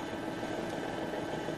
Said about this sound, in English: Cut engines. Prepare for reverse.